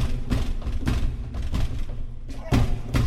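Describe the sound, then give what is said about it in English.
A stuck door is shoved repeatedly, producing a series of heavy thumps at an uneven rhythm, about five or six jolts over a few seconds, with faint rattling in between. “Damn door!”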